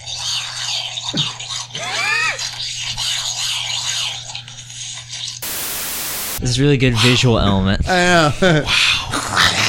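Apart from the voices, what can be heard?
cats fighting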